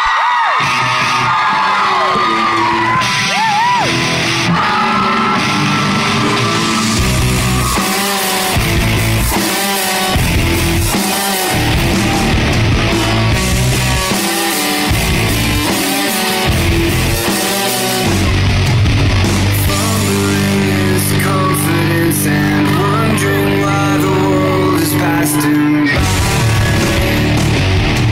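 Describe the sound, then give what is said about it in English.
A loud, sustained crowd roars and cheers for a band being brought on stage, with whoops and yells over steady applause, bursts of shouting rising and falling across the half minute and a dense wash of noise throughout. “Ladies and gentlemen, will you please give a huge round of applause”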